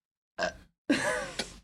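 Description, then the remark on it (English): A throaty burp comes in two parts, a short croak and then a longer, rumbling one lasting most of a second, with no talking around it. “Nice burp.”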